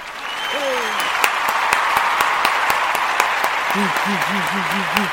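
A crowd of worshipers claps their hands together in a steady, even rhythm at the opening of the show Body of Christ Real Talk, over a dense wash of applause noise, with a few short sung or whooping vocal tones rising and falling near the end.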